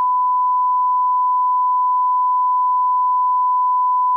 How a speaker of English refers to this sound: Let's not talk too much about that. We'll be beeping this out.